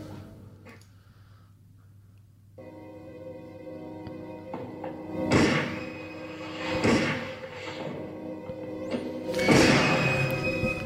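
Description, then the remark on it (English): Three muffled, suppressed gunshots from a scene in a James Bond film, the third from the Golden Gun, each a short soft thud with a hissing tail, spaced a second or two apart over a steady hum and low gangster-style background music. “And also, James Bond movies have taken great pains to make silencer sounds in the past.”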